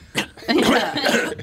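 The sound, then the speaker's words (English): A man coughs, a short burst followed by a longer, rough hacking cough that trails off. “Don't make me laugh. I'll cough.”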